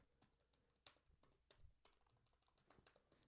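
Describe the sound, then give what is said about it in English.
Rapid, irregular clacking of keys on a computer keyboard as someone types a Google search, crisp, with a few louder keystrokes standing out; no one speaks. “For all those people that really like typing sounds.”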